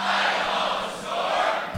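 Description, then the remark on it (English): A large concert crowd shouts back "Hi, …" in unison in answer to the greeting "Hi there, nerds", a loud, sustained roar of many voices lasting under two seconds before briefly trailing off. “Thank you for responding on behalf of everybody.”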